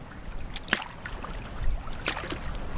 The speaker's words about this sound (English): Upriver, our boats glide through waters lush with flowering lily pads, swaying green reeds, and a habitat active with wild ducks and geese.